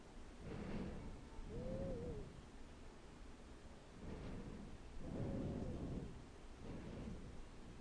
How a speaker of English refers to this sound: Can you hear the thunder rumble around you?